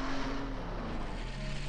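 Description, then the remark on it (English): A car engine hums steadily with a low droning tone under a broad, hissing wash of noise as a car drives away in the rain. There is no speech. “Now I'm driving away in the rain.”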